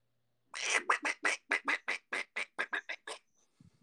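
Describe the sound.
A person does a loud, convincing duck impression, a rapid run of about a dozen raspy quacks in steady rhythm, ending with a faint low murmur.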